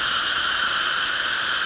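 A Zircut dental diamond bur grinds Empress porcelain restorations with gentle pressure and lots of water, a steady, high-pitched whine blended into a bright hiss of water spray. It runs continuously and evenly for under two seconds, with no voices.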